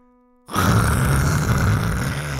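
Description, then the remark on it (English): A person imitates white noise with a loud, steady, breathy hiss over a low voiced rumble. It starts abruptly after a brief silence and holds unbroken for about two seconds. “This is what I call white noise.”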